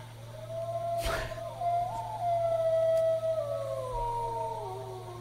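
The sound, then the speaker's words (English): Wolves howling in response to a man calling them, several long wavering howls overlapping and sliding in pitch over a steady low hum, with a brief rustling thump near the start. “He started the howl.”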